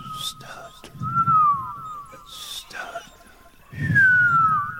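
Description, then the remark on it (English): A whispered voice with thin, sliding whistle tones breaking through on every S sound, several short whistles gliding downward between breathy, hushed syllables. “Can you whisper and whistle at the same time?”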